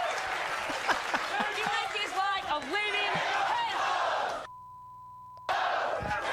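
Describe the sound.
A loud crowd cheers and whoops with scattered applause, excited voices rising and falling together; the roar cuts out abruptly near the end, leaving a brief steady tone before noise returns.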